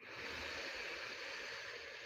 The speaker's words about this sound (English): And just take a deep breath.